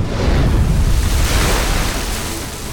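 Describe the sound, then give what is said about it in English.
A long, boxy submarine craft breaks the surface of the ocean in a cascade of bubbles and swirling water: a loud, continuous rush of churning, splashing seawater with a deep rumbling low end, easing off slightly toward the end. “Finally, the long, boxy craft broke the surface of the ocean in a huge cascade of bubbles and swirling water.”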